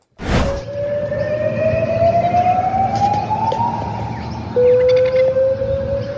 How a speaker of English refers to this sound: Sound like an air raid siren.